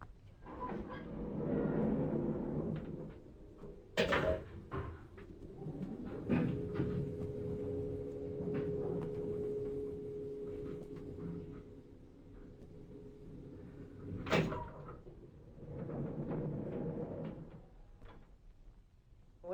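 A self-operating lift's doors slide and clunk shut, then a steady mechanical hum and rumble as the car travels up, ending with another sharp clunk as it stops and the doors open again.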